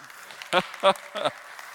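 A few scattered audience hand claps, about three sharp bursts in quick, uneven succession, stand out over a faint background hush before it falls quiet again.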